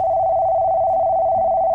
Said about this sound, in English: Hang on. I need to make a phone call. Good thing Wheeler finally installed the sat phone feature on my spy collar.